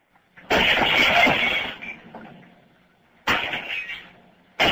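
Glass shatters loudly in a sharp burst, then fragments tinkle and scatter as the crash fades. A second loud smash of breaking window glass follows a moment later.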